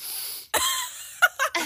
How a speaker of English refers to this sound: We're both kind of like sniffing, coughing. Our eyes are itching and watering, and I also have cats